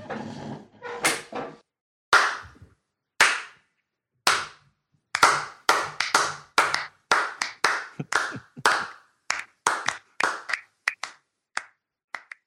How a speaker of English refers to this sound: That is a slow clap for the first ever complainant and defendant to come together to buzz market their band on the Judge John Hodgman podcast.